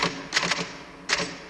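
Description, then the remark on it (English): Rapid clacking of typewriter keys as someone types while working, several sharp strikes in quick bursts with a brief pause between, fairly loud with no voices. “Whenever I'm in here, you hear me typing.”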